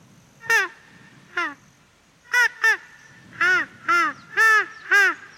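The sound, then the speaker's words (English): A voice imitates the call of ducks found throughout swamp areas with a series of eight nasal, honking quacks, a few spaced apart at first and then coming in a quicker, steady run, loud over faint background hiss. “Also, we get a lot of the ducks throughout the swamp areas. They go...”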